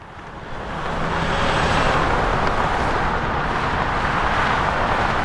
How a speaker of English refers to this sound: Looking over I-40, I watch cars, trucks, and the occasional RV speed by.